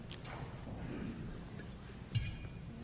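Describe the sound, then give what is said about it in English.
A water pitcher clinks against a glass: a couple of soft taps early on, then one sharper, ringing clink near the end over a low background murmur. “Let me get a hold of the pitcher.”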